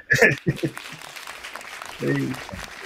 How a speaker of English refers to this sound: All right. Now so here's the applause. Woo!